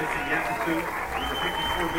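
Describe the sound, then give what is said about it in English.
A large stadium crowd of Kutztown fans applauds in the final 30 seconds of an NCAA tournament college football game, a steady, dense wash of clapping and cheering that holds at an even level throughout, with indistinct voices blended into the roar. “As the applause comes in from the Kutztown faithful, under 30 seconds to go.”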